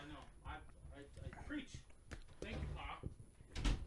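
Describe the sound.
A door is opened to let the dog Doodle out to pee, with a short knock and rattle of the handle near the end, while people talk over it.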